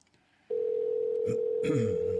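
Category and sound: signal or alarm, telephone ringing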